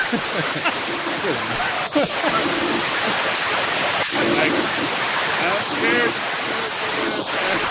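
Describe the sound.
Steady hiss of running shower water as someone takes a shower, pouring continuously throughout, with faint, muffled voices talking intermittently beneath the spray.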